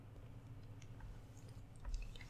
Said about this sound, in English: But without further ado, let me just take a nice little sip of H2O and get started.